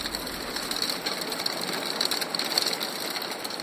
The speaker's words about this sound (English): It's a hailstorm, okay? I recorded a hailstorm. I don't know how many friends you have that sit around and record hailstorms, but I do.